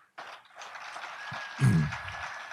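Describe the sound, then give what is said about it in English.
An audience breaks into applause, a dense wash of clapping that swells and carries on steadily, with a brief louder burst of cheering partway through. “I don't mean the applause, thank you.”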